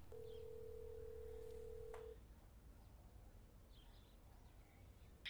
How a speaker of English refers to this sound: Then the urgency grips you, and you dial 911 on your cell phone.